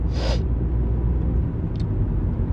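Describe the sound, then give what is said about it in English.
Steady, loud low rumble of a car's interior while driving to work in North America, with a brief airy hiss at the very start and a faint click later on; no one speaks. “I can sit here in my car driving to work in North America”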